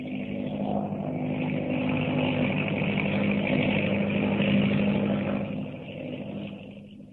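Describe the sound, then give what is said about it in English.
An autogyro's engine and propeller roar steadily with a droning, buzzing hum as it takes off at night, rising almost vertically over the trees from the grounds of Stone House, loud and continuous for several seconds before easing slightly at the end. “No, it's an airplane, but not the kind you think.”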